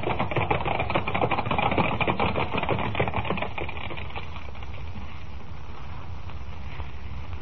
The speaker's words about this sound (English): Thundering hoofbeats echo through the crowd-lined street as the 6 white horses, suddenly gone wild, carry the swaying silver carriage to almost certain doom, while the thousands of people who only a moment ago were cheering wildly look on aghast.